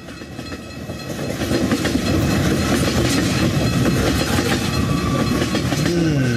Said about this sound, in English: Totally not a train wreck. It's passing trains.